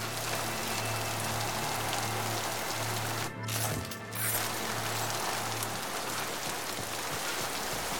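Heavy rain pours steadily outdoors, a dense, constant hiss of drops striking surfaces, briefly dipping for a moment midway, with a faint low hum underneath and no voices.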